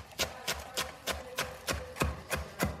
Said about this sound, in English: And what I like to do is I just like to bundle it up into a tight bunch and just run my knife right through that. So many good sounds, lots of chopping of fresh, beautiful ingredients here.